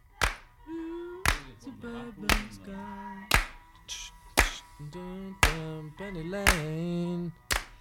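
Sharp, loud hand claps overdubbed onto studio Take Eight land on a steady beat, roughly one per second, about eight in all, over wavering sung or played tones that rise and fall beneath them.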